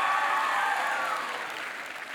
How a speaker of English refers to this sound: Come on, it's my wife. You could clap a little louder.